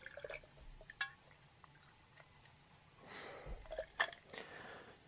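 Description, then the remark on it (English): Johnnie Walker Black Label whisky, 35 ml, pours into a glass already loaded with cubed ice for a highball: a soft splashing trickle with a few sharp clinks of ice cubes scattered before and during the pour, quiet. “We're going to put 35ml. Into the glass, which is already loaded with cubed ice.”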